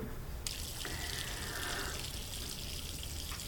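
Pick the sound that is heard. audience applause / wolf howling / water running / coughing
water running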